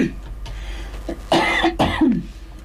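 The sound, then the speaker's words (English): A harsh coughing fit: two loud, raspy coughs burst out in quick succession, with a few smaller throat-clearing hacks before and after, and no talking. “I've got a fit of the coughing now.”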